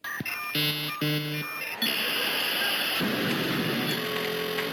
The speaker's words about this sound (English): The 56K modem.